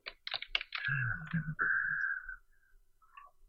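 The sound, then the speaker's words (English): A short burst of quick keyboard keystrokes clatters while someone looks up Spider-Man Homecoming, then gives way to a steady electronic-sounding tone and low hum that fades out. No one speaks. “Trying to look up Spider-Man Homecoming without typing in Spider-Man Homecoming, mm-hmm.”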